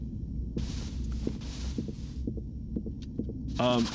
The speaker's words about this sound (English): Okay, it's elevator.